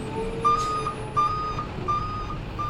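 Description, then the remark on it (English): A large truck of about 7 tons maneuvers slowly past cars about 2 meters away, its engine rumbling steadily while a backup alarm beeps at a regular pace, about four evenly spaced beeps, with no voices. “That truck is not going to make it past those cars.”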